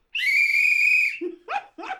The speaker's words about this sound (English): What on earth? We've got a whistle today.